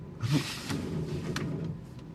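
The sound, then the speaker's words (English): A car making an odd noise: a steady low droning hum with a faint, regular tick recurring roughly every two-thirds of a second, fairly quiet and with no voices. “It's definitely your car making that noise.”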